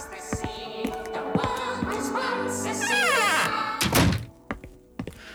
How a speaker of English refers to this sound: Hang on. I'll close the door.